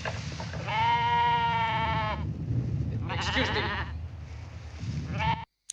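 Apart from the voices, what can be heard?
sheep bleating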